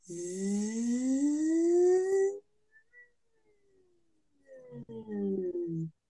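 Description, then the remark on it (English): A voice holds a buzzing "zzz" sound, a Z sound vocal exercise, that slides steadily upward in pitch for about two seconds, falls silent briefly, then gives a second, shorter, wavering buzz. “Another great one is a Z sound, just going.”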